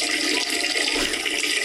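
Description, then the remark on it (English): A steady, strong stream of urine splashes continuously into water, a loud, even hiss-like pour with no breaks or trickles for the whole moment, and no one speaking. “Man, that's a, like a steady, strong stream, too.”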